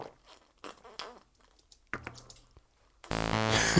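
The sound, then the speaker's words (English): Wet gulping and swallowing sounds from people chugging beer out of bottles, a few uneven mouthfuls, then an abrupt, much louder harsh burst takes over at the end. “Chug the beer until you hear the dog bark.”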